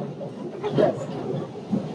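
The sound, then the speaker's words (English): Steady low rumble of a moving MTA commuter train to New York City, with continuous rattling and a couple of louder jolts, heard from inside the car. “This is the MTA train to New York City.”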